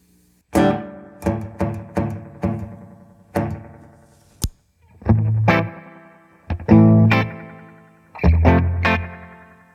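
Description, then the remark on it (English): Electric guitar run through a heavy analog-style chorus with a feedback circuit, pushed toward self-oscillation: a series of loud plucked chords, then longer swelling, wobbling sustained notes, with no talking. “So it's a feedback circuit, obviously, but it does let you get to the point of oscillation, but it doesn't go all the way into like continue.”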